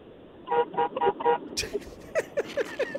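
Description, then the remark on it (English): A car horn honks four quick times in a steady rhythm, short bright beeps, followed by a scatter of other brief sounds. “Hey, beep your horn.”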